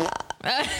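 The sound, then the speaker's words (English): A short, sputtering fart noise made with the mouth, a quick run of buzzy lip pulses, trailing straight into a wavering vocal sound. “Fart noise.”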